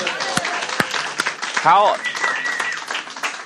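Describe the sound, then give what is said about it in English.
An audience at an Easter service bursts into steady, dense applause for Jesus, with scattered cheers and whooping voices rising over the clapping throughout. “Can we give Jesus a round of applause real quick?”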